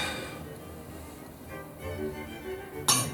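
Wine glasses clink once in a toast at a dinner party near the end, a bright ringing chime that cuts sharply above a quiet, murmuring background.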